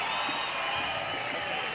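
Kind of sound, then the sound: crowd, audience applause and cheering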